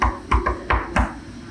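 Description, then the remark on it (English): Five loud knocks on a door in an uneven rhythm, each a sharp thud with a short hollow ring, followed by quiet with no voices; someone is knocking to serve a restraining order. “When you hear knocking on the door, don't answer the door.”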